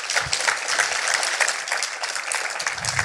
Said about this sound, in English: Yeah, we can give her another clap.